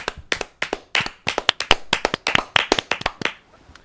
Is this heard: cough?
no